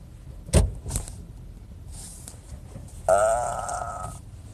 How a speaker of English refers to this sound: I'm gonna just try to park my car now without completely screwing something up here.